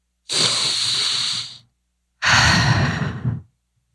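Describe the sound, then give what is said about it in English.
A deep, audible breath drawn in over about a second, a brief pause, then a long breathy exhale, clear with no talking. “Definitely breathing a little deeper.”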